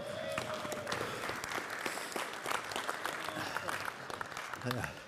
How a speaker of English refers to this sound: I really had a little more time carved out for applause, but okay.